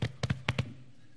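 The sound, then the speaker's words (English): Five quick hollow thumps like a fist pounding a chest, silverback gorilla-style chest thumping, one beat followed by two fast pairs, loud and resonant with nothing else in between. “All to say that our culture encourages this kind of silverback gorilla thumping.”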